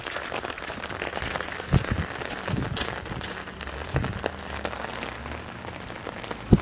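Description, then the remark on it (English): Steady rain patters densely onto a street, a continuous wash of drops broken by a few louder splashes and taps; so much rain has fallen that a little river of water runs down the street. “there's like a little river going down the street because of all the rain”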